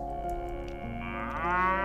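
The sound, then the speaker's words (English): A calf moos in one long, steady call that rises in pitch and swells louder toward the end, with no talking. “Lamb-cheek calf called, bah. Moo.”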